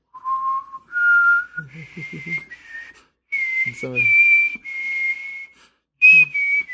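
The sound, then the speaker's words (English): A person whistles a slow, eerie tune of long held notes that climb upward in steps, clear, with brief low vocal sounds murmuring underneath at moments. The whistler is making up a random spooky tune. “Yeah, and you can hear like an ominous whistling in the back.”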